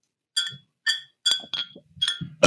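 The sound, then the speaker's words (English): Glass beer bottles are clinked together by someone sitting at a desk, in a steady series of about six bright, ringing taps, each leaving a short high-pitched tone before the next strike, like wind chimes, with no talking. “While you're doing that, I just want to make some little glass bottle sounds.”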